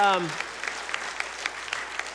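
Audience applause, a steady patter of many hands clapping at moderate volume, following the tail end of a spoken phrase at the start.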